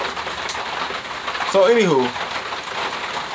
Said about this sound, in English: So y'all don't have to hear the rain. Y'all can hear me talking, but y'all can hear the rain a little bit in the background.